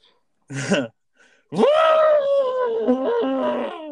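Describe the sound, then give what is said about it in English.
A person imitates an African elephant: a short gruff burst, then a long, loud, wavering trumpet-like wail with strong harmonics that dips and rises before trailing off. “I move with the elegance like an African elephant.”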